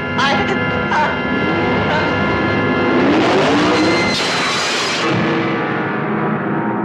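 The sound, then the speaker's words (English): A car engine revs loudly and steadily, its pitch climbing in a rising sweep around the middle before settling into a sustained roar, with a busy, layered soundtrack underneath. “I think I hear the engine of that car.”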